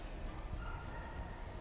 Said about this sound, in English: I can't believe dogs are capable of barking that long without hurting themselves. Like, it just sounds painful. It absolutely amazes me these dogs don't wear themselves out. Like, how long is a dog capable of barking before it gets bored?